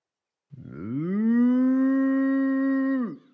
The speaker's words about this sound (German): Eine Kuh?